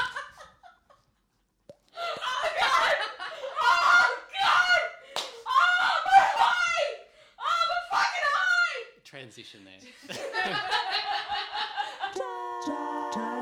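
Several seconds of rapid, rhythmic slapping of skin against skin, close and loud, followed by a burst of high-pitched screaming mixed with laughter, then a short tonal musical sting.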